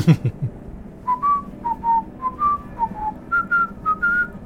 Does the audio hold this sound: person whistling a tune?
yes